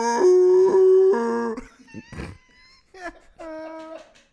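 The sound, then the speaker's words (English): A voice imitates a long, wavering howling scream, loud, held for about a second and a half, followed by a brief second yowl after some breathy noises. “And why has that scream changed so many times over the years?”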